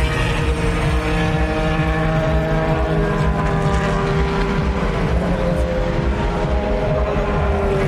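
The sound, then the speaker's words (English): A dense, loud roar of GT race car engines runs the whole time, with pitch shifting slightly as cars stream past at speed, the last being Fizzy Keller in the number 51 AF Corse Ferrari. No one speaks. “That last one was Fizzy Keller in the 51 AF Corse Ferrari.”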